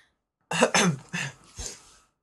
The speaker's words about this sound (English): Cough, cough. Yes. Clears throat.